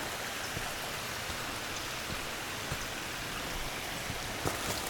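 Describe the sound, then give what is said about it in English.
Steady rush of running water from a tiny stream spilling over a little waterfall, a constant hiss with faint splashy ticks and no voices. “Yeah, there is a tiny stream, a little tiny waterfall.”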